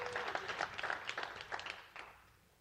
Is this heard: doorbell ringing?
no